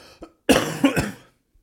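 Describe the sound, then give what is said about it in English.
A person with a very dry throat gives a fairly loud phlegmy cough in two quick rasping bursts, like someone clearing a clogged throat, followed by quiet. “God, that was a bit phlegmy.”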